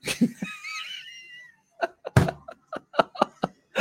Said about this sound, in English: You hear people coughing? Do you hear that? They're all coughing.